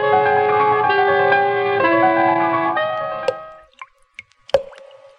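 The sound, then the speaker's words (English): Thick drops of blood fall one at a time, a few irregular drips and plops, at the start of the film Black Sunday, following a sustained, droning musical tone that fades out just before the dripping begins. “The sound you hear is dripping blood.”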